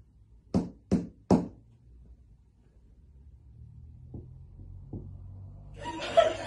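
Three hard, loud knocks come from beneath the floor in quick succession, followed by a low rumbling hush, a couple of faint taps, and a burst of rustling noise at the end.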